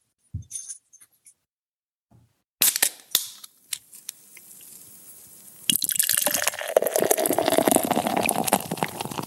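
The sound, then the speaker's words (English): A can or bottle of Prince of Pilsen, a crisp, dry-hopped Euro-style pilsner beer, cracks open with a sharp hiss and a few clicks, then after a pause the beer is poured, a steady fizzing, gurgling stream that grows louder and fills the last few seconds. “So, brother, without further ado, let me pour myself a Prince of Pilsen.”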